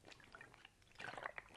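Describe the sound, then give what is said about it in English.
A quick slurp of juice: a short run of soft wet sipping noises with a few brief gurgles, fairly quiet and with no talking. “So just a quick slurp of water.”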